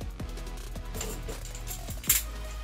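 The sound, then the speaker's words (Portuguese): A protective cover is pried off a small keyboard: a few dull plastic knocks and scrapes, then a sharper click and rustle near the end, with no one talking. “Eu vou comparar ele aqui, deixa eu tirar essa proteção aqui pra vocês verem melhor.”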